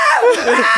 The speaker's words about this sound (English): I pictured the moment you walked in and you did your scream and everything.